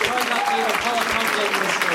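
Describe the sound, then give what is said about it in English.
An audience applauds the guests steadily, a dense wash of clapping that holds at an even level throughout, with a voice faintly audible over the applause. “Well, please give a round of applause to our guests.”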